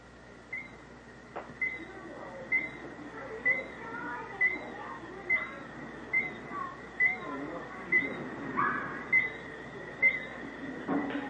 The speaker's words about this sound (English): That bird will keep that up all night. Now I can hear another one answering him from a couple hundred yards out. Listen.